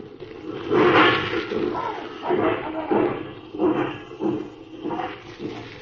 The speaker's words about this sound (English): Suddenly, in the midst of the merriment at the town hall, comes the alarm of fire. The Green Valley roundhouse is ablaze. The crowd breaks up and streams over to the railroad yards where men work frantically to rescue the burning engines.